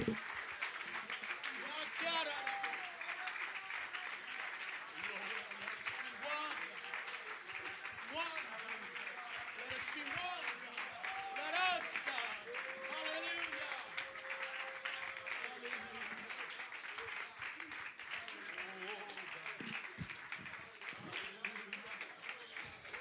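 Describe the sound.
A large audience in a church claps hands steadily and densely for over twenty seconds, a loud, continuous wash of clapping with voices calling out and singing mixed underneath.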